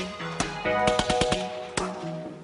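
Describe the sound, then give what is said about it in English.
Sharp gunshot samples crack in a rhythmic pattern over a sustained musical beat, with a quick cluster of shots in the middle and a few spaced hits before and after. “This is the hardest beat anybody's ever heard. It's made out of gunshots. Gunshots on a beat.”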